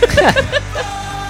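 A song where several men yell together in short, loud, overlapping bursts, then the shouting quickly drops away to a quieter musical background.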